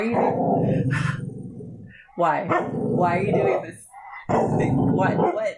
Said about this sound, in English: don't growl at me, don't you bark at me either, stop it.